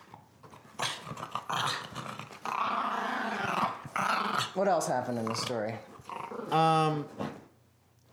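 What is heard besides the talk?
dog growling and whimpering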